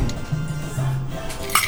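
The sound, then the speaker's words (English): Ice rattling and sloshing inside a metal Boston shaker as a cocktail of orange juice and passion fruit juice is shaken in a steady, continuous shake, ending with a sharp metallic clink; no one speaks. “Then you're gonna shake it in the shaker. Okay. Or the Boston shaker.”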